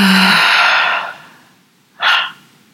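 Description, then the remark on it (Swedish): A long, breathy exhale through the mouth during a guided breathing exercise, soft hiss fading out over about a second, followed after a pause by a shorter, quicker breath. Fairly loud, with no talking. “Och vi släpper långsamt ut genom munnen.”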